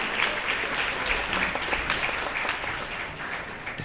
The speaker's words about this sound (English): You've been a wonderful, caring, and respectful group. So please give yourselves a big round of applause.